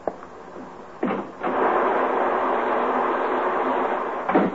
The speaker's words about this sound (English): Is the rain letting up a little, or am I just getting used to it? It doesn't sound as bad as it did.